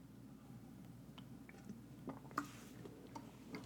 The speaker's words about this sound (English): I'm having a sip of water. That's why there's a break.